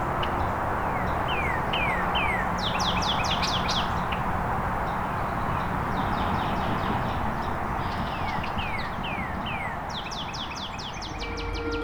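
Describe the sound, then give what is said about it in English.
A northern cardinal sings loud, clear phrases of repeated slurred whistles, several bursts in a row, over a steady rushing background noise. “There's a northern cardinal here, being a bit loud.”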